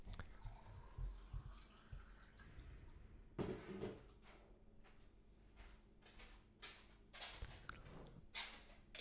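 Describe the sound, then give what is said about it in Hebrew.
Water runs and splashes into a container in uneven bursts, with occasional clinks and clatter; no one speaks. “מים עולה.”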